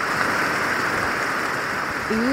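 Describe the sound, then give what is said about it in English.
Steady, dense night rainfall in an old-growth forest in Borneo hisses evenly throughout, a continuous wash of drops with a high insect-like shimmer above it; a voice briefly begins right at the end. “This is the rain at night in an old growth forest in Borneo.”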